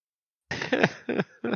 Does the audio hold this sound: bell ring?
no